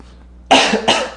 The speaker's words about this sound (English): How are we going to edit this out? I got a cough. Cough it up.